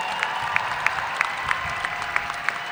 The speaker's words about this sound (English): Cheer the elders, they deserve that too.